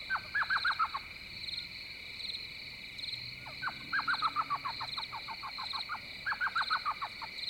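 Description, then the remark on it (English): An elf owl yelps from mesquite trees on the flats along a river near a camp in spring, three quick bursts of high, chattering notes, each a rapid descending series, set against a steady drone of insects. “Not far from our camp, I soon discover an elf owl, yelping from the sea of mesquite trees that populate the flats along the river.”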